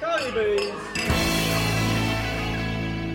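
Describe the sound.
Glasses clink together a few times in a busy pub, followed by a sustained bright ringing tone, with a low murmur of voices filling the background throughout.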